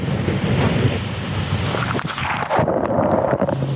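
Glacier calving at the Spencer Glacier: a loud, broad rushing roar of ice and churning water with wind noise. Partway through, the high hiss drops away, leaving a deep rumble. No voices.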